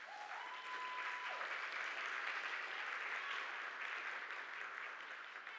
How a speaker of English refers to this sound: You see, today a couple of people are getting baptized, and it's a beautiful moment. Y'all can clap for that.